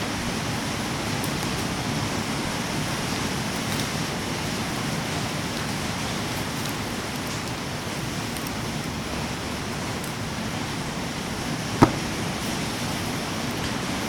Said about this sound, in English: Yeah. It's pouring right now. It's pouring.